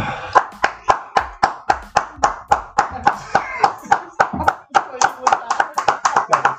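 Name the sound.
hand clapping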